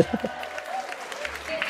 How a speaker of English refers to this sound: We came out and the crowd went wild.